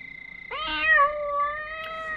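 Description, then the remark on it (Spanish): A single drawn-out cat meow, clear, rising then holding a tonal wail for over a second, heard on its own without any talking. “¿Qué fue eso, gatito?”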